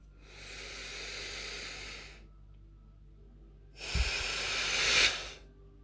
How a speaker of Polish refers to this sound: Więc weź wdech z tym świeżym powietrzem, połącz się z tym uczuciem i z wydechem wyrzuć to uczucie z siebie. Wydech jest mocniejszy.